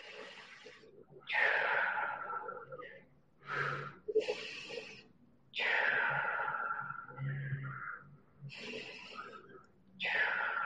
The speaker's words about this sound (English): We're just going to start off breathing nice and easy, breathing into the nose, exhaling through the mouth, nice and easy.